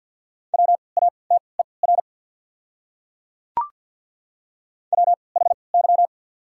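Fast Morse code at 50 words per minute with 3x character spacing, sending words from a practice set of the top 200 words, in a steady mid-pitched tone: rapid beeps clustered into short groups, then a long silence broken by one sharp click before another burst of beeps.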